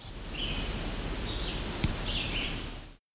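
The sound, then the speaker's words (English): A Blackburnian Warbler's thin, very high song drifts over steady outdoor hiss, with a Red-eyed Vireo's short phrases mixed in, both fairly faint; near the end a Pine Warbler also sings. “This one was also the Blackburnian Warbler, also with Red-Eyed Vireo.”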